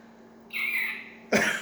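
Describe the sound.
A voice imitates a cough: a thin, high squeak held for nearly a second, then one abrupt, harsh cough-like burst, close and fairly loud, with no talking.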